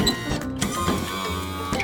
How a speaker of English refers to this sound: A motorized wheelchair helps people who have trouble walking move around. It's a wheelchair that's moved by a motor.